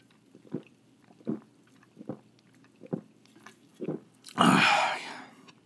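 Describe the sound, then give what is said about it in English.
Swallowing from a drink, five steady gulps spaced under a second apart, followed by a louder, breathy rush of air as the drinking ends. No one speaks. “I'm going to take another sip, and I'm not even going to edit this out.”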